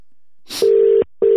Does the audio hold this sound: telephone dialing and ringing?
yes